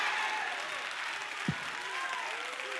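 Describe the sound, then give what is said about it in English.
A large crowd in North Carolina applauds and cheers steadily for the whole stretch, a dense, sustained wash of clapping with scattered voices mixed in and no pause or fade. “Y'all did exactly what I thought you were going to do. You got pumped up.”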